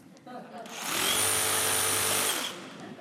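A power drill whirs up loudly for about a second and a half, a steady high-pitched motor whine that cuts off abruptly, with faint background murmur before and after.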